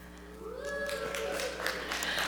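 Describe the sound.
An audience breaks into applause, a steady wash of many hands clapping that swells after a brief quiet start, with a voice sounding briefly over it.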